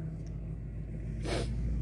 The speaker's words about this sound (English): Whoops, one second. There's a beast of a truck going by. Oh, is that the cattle rancher guy? He has a dually, a white dually like that. Yeah, but I don't think it was him.